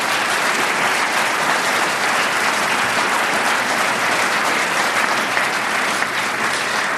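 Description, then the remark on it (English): A crowd claps steadily for several seconds, a dense, even wash of many hands with no voices standing out, loud and sustained without fading. “So let's give all three of them a big hand of applause for making this happen.”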